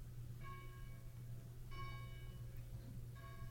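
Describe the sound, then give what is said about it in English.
A bell tolls three times at a slow, even pace during a sermon at about 10:51, each ringing strike shimmering with bright overtones before fading, over a steady low background hum. “I didn't know they had a bell.”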